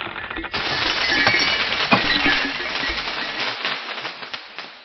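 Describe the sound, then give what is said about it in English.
Loud glass shattering: a sudden crash followed by several seconds of dense tinkling and clinking shards that gradually thin out and fade, with no voices. “Everyone I touch dies a horrid death and shatters into diamonds.”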